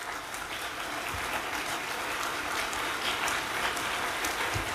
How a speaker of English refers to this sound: We're clapping for Ukraine. Okay, we're doing our part.